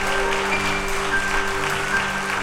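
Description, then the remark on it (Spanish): A crowd claps steadily and loudly in applause for the King, the dense patter of many hands continuing without pause, with a low hum sustained underneath. “¿Alguien puede dar un aplauso al Rey?”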